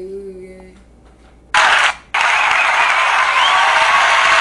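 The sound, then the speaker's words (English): A round of applause bursts in loudly, cuts off for a moment, then resumes as a steady, dense wash of clapping that carries on to the end, after a quiet opening. “Just for that, we're going to go ahead and give you a round of applause.”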